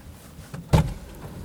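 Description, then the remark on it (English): A faint shuffle, then one solid car door thud as a person gets into a Nissan NP300, short and fairly loud, fading quickly into a quiet interior hush. No one speaks. “Now, we're just going to pause for 1 second while the production queue enters the car.”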